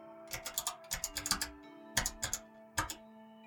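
Someone types on a computer keyboard, heard over a police wiretap on a phone call, in quick bursts: a rapid run of clicky keystrokes, a pause, then a few scattered taps, soft, over a steady low electrical hum.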